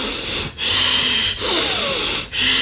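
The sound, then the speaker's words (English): Loud, forceful breaths pushed in and out in a steady rhythm as a breathwork demonstration, three harsh rushing strokes with only brief pauses between them, and no talking. “I know they can't see me, but if they can hear that, that's kind of like, it's like in and out, in and out. So, I mean, the idea is really, it's supposed to be like a cleanse.”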